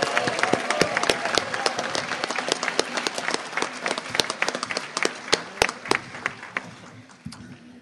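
A crowd applauds steadily, with many overlapping sharp claps forming a dense, crackling patter that stays fairly loud throughout, then thins toward the end.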